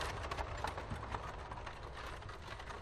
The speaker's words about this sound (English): We've got horses, and we have followed the track along the river.